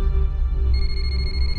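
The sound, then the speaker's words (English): A phone starts ringing partway through, a steady high electronic tone with a faint warble, over a continuous low rumble. No one speaks. “The phone rings.”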